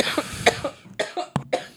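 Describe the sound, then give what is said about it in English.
A rapid fit of harsh, raspy coughing, several bursts in quick succession, from someone coughing after taking a hit from a vape. “I'm coughing from a free rip.”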